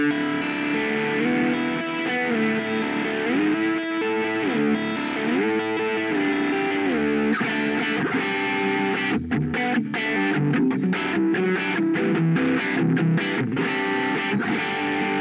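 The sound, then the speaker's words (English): A heavily compressed, distorted electric guitar with two humbucker pickups, played through an amp profiler, plays sustained, saturated chords and riffs, thick and loud throughout with a slight hiss, and no voices. “So it starts getting really compressed and distorted at this point. All really good tones. It's starting to hiss a bit, if you can hear it.”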